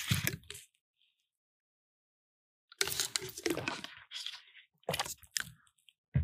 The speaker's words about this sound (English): Give me 1 second. I gotta take a sip.